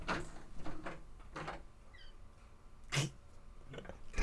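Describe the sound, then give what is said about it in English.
A tiny, high-pitched cat meow, faint and brief, sounds midway through as the cat wants in at a door, amid a few soft scraping and bumping noises like the door being handled. “Tiny meow.”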